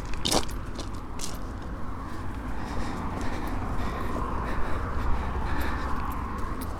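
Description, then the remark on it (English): Road traffic on the road leading onto the Isle of Portland, near the ferry bridge, makes a steady, continuous low rumble in the background throughout, with occasional sharp crunching clicks and no one speaking. “You can probably hear the noise of the road that leads onto the Isle of Portland in the background.”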